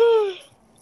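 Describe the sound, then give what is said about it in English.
A brief voiced yawn from a woman, a breathy, harmonic sigh that slides slightly downward in pitch and fades out within half a second, followed by near silence. “She literally just yawned on the podcast.”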